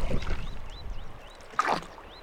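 A small boat drifts on calm water of the Yampa River, a break from the rapids, with soft lapping and gurgling, one brief splash, and birds chirping repeatedly in the background.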